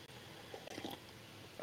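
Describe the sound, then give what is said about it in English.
A quiet sip of hot coffee, with soft wet mouth and swallowing noises in a few brief bursts and no talking. “I'm going to take a sip of coffee while I wait for that.”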